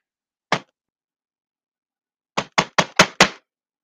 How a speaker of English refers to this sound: I'm sorry that y'all hear me banging on this computer, like, because it's aggravating sometimes, especially when things don't do the things that you're asking them to do.